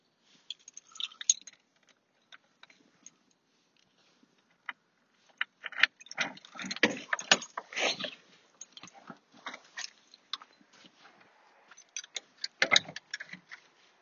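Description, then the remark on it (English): A bunch of keys jingles and clinks in irregular bursts, sparse at first, then a dense rattling cluster and a final flurry of metallic clicks, with no one talking. “Oh, yeah, I locked this up a bit. Find the keys if you can.”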